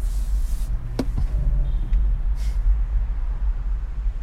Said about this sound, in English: And I am dreaming of a silent traffic in Rome. As you can see, the noise is very high and it pollutes our ears. So I'm dreaming of a silent Roma.